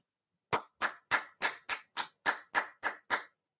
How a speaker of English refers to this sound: You deserve a round of applause for that